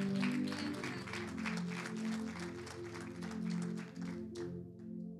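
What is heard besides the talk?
audience applause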